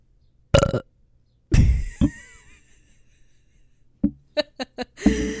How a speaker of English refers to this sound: Oh, I love myself. That's good. The burp sounds good on the mic. I like it.